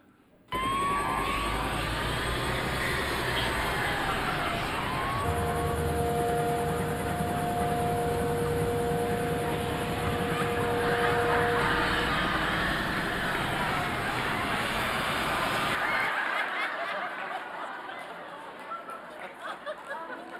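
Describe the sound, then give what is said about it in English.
A police car chase from a Canadian Midas tire commercial, set in Saskatoon, Canada: loud, continuous roaring engines with sweeping siren wails and steady tones over a busy wash of noise and murmuring voices, fading abruptly near the end. “No, it's actually a Canadian Midas tire commercial, okay?”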